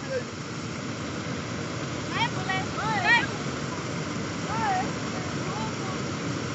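A waterfall in South Africa rushes with a steady, dense roar that fills the whole scene, while a few short chirping calls rise briefly above it near the middle.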